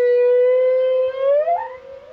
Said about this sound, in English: This is a humpback, a lone male recorded in the Caribbean. These complex melodic calls are used to attract potential mates.